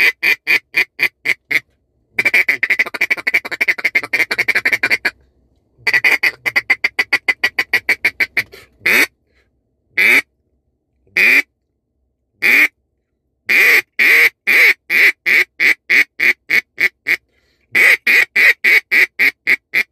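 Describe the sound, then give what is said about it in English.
A Blizzard single-reed duck call from Beaver Creek Game Calls blown in loud, rapid quacking bursts, with runs of fast rhythmic quacks broken by short pauses and a few longer drawn-out notes, with no talking. “this specific one that I'm going to show you guys here is going to be a single read that I have designed here”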